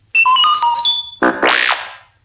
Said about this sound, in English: You will know it is time to listen when you hear the chime like this